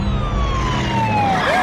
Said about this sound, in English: Hate it when they put sirens in commercials.